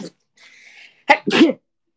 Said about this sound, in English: I'm gonna sneeze.